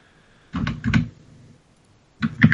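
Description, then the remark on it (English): Slow, uneven tapping on a computer keyboard as someone looks something up: a few clacks in a cluster, a pause of more than a second, then another short burst of keystrokes, like someone hunting and pecking for letters. “It sounds like he's hunting and pecking on his keyboard, like he can't find the letters.”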